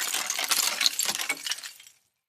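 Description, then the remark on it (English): Icicles snap, fall and shatter in a bright, glassy tumble of tinkling crashes, a busy cascade of brittle clinks lasting about two seconds before trailing off into silence. “They point down and are slippery. Icicles!”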